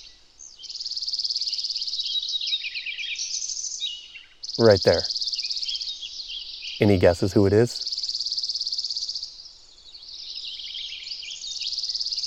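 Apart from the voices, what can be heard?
lincoln's sparrow singing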